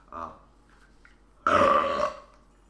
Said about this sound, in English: That one was a real burp. There's no demons in that one.